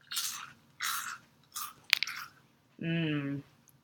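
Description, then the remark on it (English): Loud crunching as someone bites and chews a crispy vegetarian snack that looks like raw pieces of bacon and smells like pulled pork, with four crisp bursts spaced about half a second apart, then a brief drawn-out vocal groan. “And let me just hear the crunch.”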